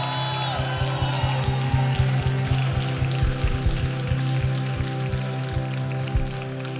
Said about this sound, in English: Give the Lord a shout, a hand clap, cheer.